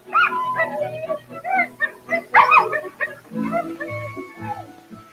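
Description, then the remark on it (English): A pack of sled dogs yelps, barks and whimpers in a restless, overlapping chorus, with high whining cries mixed among sharper barks, fairly loud throughout. The dogs are kept in boxes set into the sides of tunnels. “The dogs slept in boxes put in the sides of the tunnel.”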